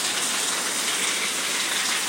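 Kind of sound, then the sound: nature, heavy rain falling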